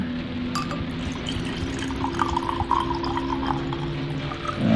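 Liquid pours steadily into a vessel for several seconds, a continuous gurgling trickle with a low hum underneath and a brief clunk at the end.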